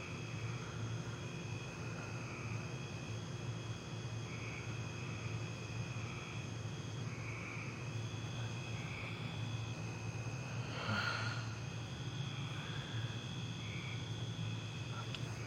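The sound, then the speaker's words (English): A steady mechanical drone hums outside without pause, low and rumbling with thin sustained whining tones above it, holding an even level throughout with a brief swell near the end. “Outside, the hum, like a drone, militaristic.”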